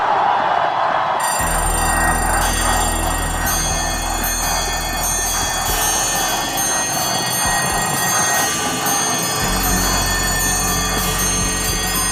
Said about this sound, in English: Yeah, you know what that is, Ron? That's alarms. What do you use alarms for, Ron? How do you get up in the morning, Ron DeSantis?